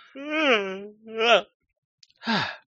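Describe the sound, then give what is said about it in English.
A person who has just woken up in a shelter yawns aloud, a long drawn-out vocal groan with a sliding pitch, followed by a shorter rising-falling sound and, after a pause, a brief sighing exhale, clear. “I can't shake this yawn.”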